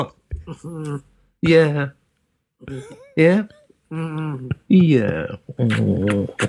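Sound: dog whimpering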